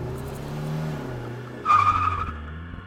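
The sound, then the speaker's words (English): A car engine hums low and steady, then tires let out a sharp, sustained squeal as the vehicle pulls away, the engine note dropping beneath it. Fairly loud, with no voices. “ordered him to get in”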